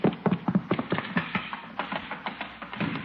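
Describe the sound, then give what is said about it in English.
Horse hooves clip-clop in a quick, uneven run of sharp knocking taps, steady in loudness, with no voices over them. “Hey, that sounded like a horse.”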